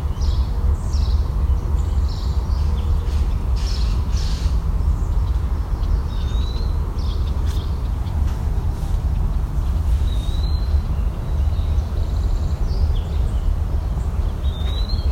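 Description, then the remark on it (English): Thin, high wood-pewee and gnatcatcher calls come at scattered intervals, a few short upslurred notes set against a constant low rumble, like a train or traffic. “Is there woodpewee again? And gnatcatcher?”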